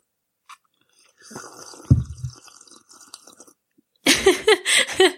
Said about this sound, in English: That was a good slurp.